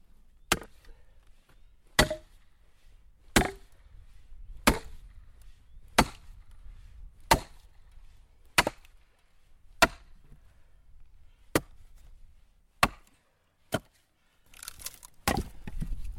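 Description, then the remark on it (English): Sharp, loud axe strikes split wood at a steady pace, about one every second and a half, each crack clean and percussive, with a low rumble and faint rustling between blows. “I don't think anybody could beat me splitting wood.”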